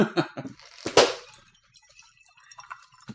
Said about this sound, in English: Wow. That's good looking glass. Hear that? That's palaver goodness.